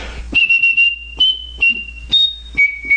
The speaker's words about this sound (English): I can whistle very high and on pitch.